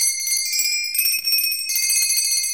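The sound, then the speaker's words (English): The doorbell of Sandy's workshop at the North Pole rings with bright, sustained metallic tones that shift twice over a few seconds, fairly loud, with no voices. “We walked over to Sandy's workshop, rang the bell.”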